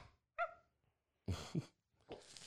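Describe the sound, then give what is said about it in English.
A puppy in a TikTok video gives a high, short yelp, then a pair of rougher barks and a whiny, whimpering cry. The sounds are fairly soft, with brief silences between and no talking. “Puppy dog cuteness. Cuteness overload, huh?”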